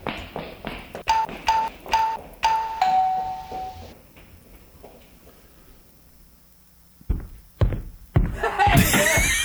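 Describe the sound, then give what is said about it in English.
A doorbell rings several times in quick succession, its bright chime mixed with sharp knocking, then fades; a few seconds later voices and shuffling noise come in loudly. “Hold on, let me get the door. Can you go get the door, please?”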